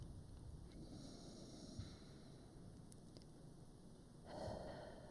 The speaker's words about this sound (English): Again, when you're ready, a nice full inhale through your nose and then an even longer exhale out your mouth.